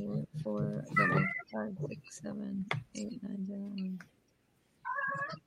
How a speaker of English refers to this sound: Crazy cat.